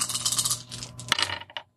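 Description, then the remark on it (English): Dice clatter and roll across a hard tabletop, a bright rattling burst with a few quick bounces that settle into silence, fairly loud with no talking. “Sorry, I didn't roll one more dice.”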